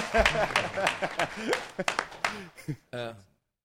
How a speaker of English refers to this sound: You guys can clap, too, when they say that. There you go.